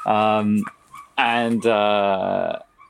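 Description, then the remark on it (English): A dog barks loudly: two drawn-out, tonal barks, the second longer and wavering, separated by a short pause, with no talking over them. “Do you want me to go and kill that dog?”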